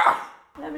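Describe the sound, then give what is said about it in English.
A single quick sneeze bursts out, fading fast into a short hush before a voice begins talking again. “Bless her. Bless you.”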